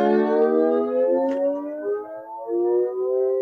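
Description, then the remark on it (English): A steel guitar played with a sliding bar, its sustained chord gliding slowly downward, dipping, then bending back up in smooth, wailing slides, fairly loud with no talking. “What makes it a steel guitar is that you don't fret it like you do an ukulele or a regular guitar, but instead you use a steel bar, and that's where the term steel comes from. It just acts like a movable fret and lets you do things like this.”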